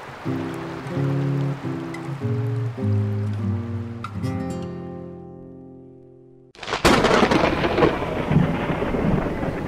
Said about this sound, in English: Hey, when did the weather get all stormy? Oh, great. You've really riled it up now.